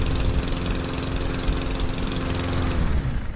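A small lawnmower engine runs steadily and loudly, its buzzing drone holding an even pitch before dropping slightly near the end, with no voices.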